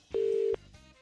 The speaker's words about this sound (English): And if your name begins with T, we're going to call someone back right now and they've got to answer the phone with the correct phrase.